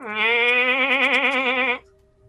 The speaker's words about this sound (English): Oh, and well, because of the firelight, I will say, you do see a bit of a pen here. with a bunch of bleating goats and sheep.